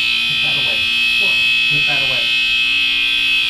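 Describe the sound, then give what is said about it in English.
A smoke alarm in Virginia blares a loud, steady, high-pitched tone nonstop for the whole stretch while someone talks quietly beneath it; it was set off by smoke after leftover oil in a pan caught fire on a wrongly lit stove burner while mashed potatoes were being made. “lit the wrong burner. So now we have smoke and fire alarm.”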